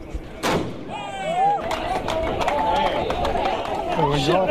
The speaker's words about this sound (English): Mayor Wayne Brown fires a cannon to signal the launch of Moana Auckland, an annual festival celebrating the City of Sail's namesake.